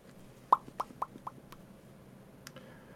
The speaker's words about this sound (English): And then there will be a knock at your door.